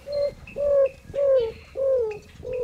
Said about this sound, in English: Have you ever heard a roadrunner sing? That's the maker of this cooing sound.